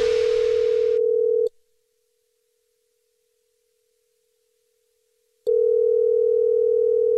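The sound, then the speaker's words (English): A telephone ringback tone of an outgoing prank phone call: a steady electronic ring sounds, falls silent for about four seconds, then rings again, loud and clear with no voices. “No, I'm calling him right now, dude.”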